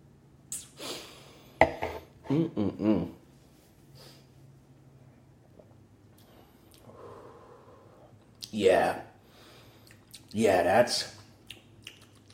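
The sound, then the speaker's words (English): Quiet sipping of a drink being tasted, with soft slurps and a few light clinks of a glass, followed by two breathy, airy slurping draws separated by near silence. “Let me take another sip.”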